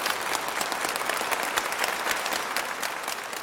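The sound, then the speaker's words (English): An audience applauds steadily for frontline workers, a dense wash of many hands clapping at an even loudness for a few seconds with no voices over it. “So let's have a round of applause for those frontline workers”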